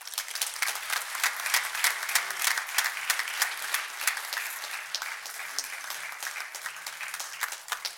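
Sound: audience applause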